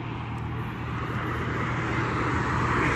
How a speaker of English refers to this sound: I'm on the overpass and there's traffic that's headed northbound. There's traffic that's headed northbound here.